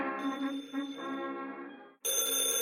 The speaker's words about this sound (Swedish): Oj, vänta, jag hör en telefon som ringer.